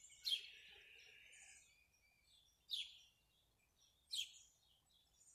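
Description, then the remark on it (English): Three bright, high bird calls ring out outdoors at even intervals, each a sharp descending chirp with a brief trill, the first one trailing into a longer warble, against quiet background. “I love the night birds, I love the morning birds, I love the afternoon birds.”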